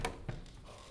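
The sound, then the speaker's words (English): A door opens: a sharp latch click, then a soft, dull thump a moment later, fairly quiet over a faint background hum with no one speaking. “Guys, the door.”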